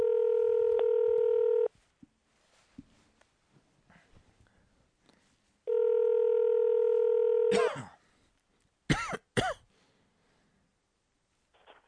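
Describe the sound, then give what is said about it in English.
A landline's steady, buzzy dial tone sounds twice, each lasting a couple of seconds with a quiet gap between, followed by a few sharp dialing clicks and short bursts. “All right, opening my door. Landline.”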